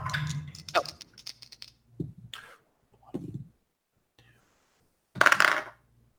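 Dice are rolled by two players taking turns in a game, clattering and rattling across a hard surface in several bursts of clicks, with a louder final tumble near the end and quiet pauses between rolls.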